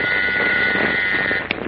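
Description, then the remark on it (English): An interoffice phone in Clark Kent's office at the Daily Planet in Metropolis buzzes as city editor Mr. Burroughs calls, with one long, steady electric drone, fairly loud and harsh, lasting over a second before cutting off abruptly with a small click. No one speaks. “Burroughs, the city editor, calls him on the interoffice phone.”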